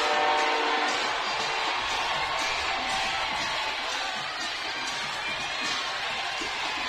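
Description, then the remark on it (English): A large parade crowd cheers and roars continuously for Travis Kelce, a dense, loud wall of voices that stays steady for the whole stretch, with scattered shouts rising out of the din. “You can hear the cheers. You can hear the crowd.”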